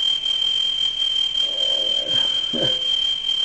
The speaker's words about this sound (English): we have an alarm here